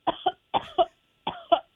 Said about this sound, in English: Name a famous cough. Cough? Yes, a famous cough.